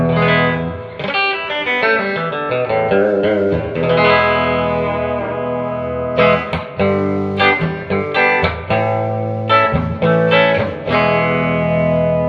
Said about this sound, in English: And the reverb on this thing is going to be maxed out. We're going to max it out. Because it's kind of a weak reverb, but it's a good reverb. So here we go. This is the reverb maxed out on the Stage 400 by Univox.